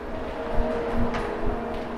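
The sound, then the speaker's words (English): Steady metro station ambience with a passing train: a constant low rumble with a droning hum of rail machinery and a few soft clanks, unbroken, with no one speaking. “So this is in the metro now.”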